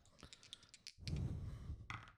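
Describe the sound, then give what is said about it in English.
A quick series of small plastic clicks, like dice rattling in a hand, then a louder tumbling clatter across a tabletop with a low rumble, ending in one more sharp click, as dice are rolled to hit in a game, landing on an 8 and a 9. “Dice.”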